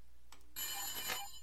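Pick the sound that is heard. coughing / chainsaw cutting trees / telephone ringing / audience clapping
telephone ringing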